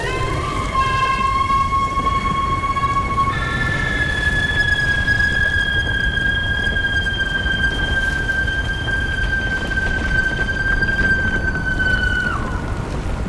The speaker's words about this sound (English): The woman's face was frozen in a rictus of pain and torment, and was attached to a broad tendril of burning muscle, sliding between the rocks, spewing horrific flame from her gaping mouth. Then she screamed.